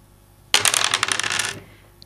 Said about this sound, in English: So that's going to be 3 dice. Okay. And you're going to roll them.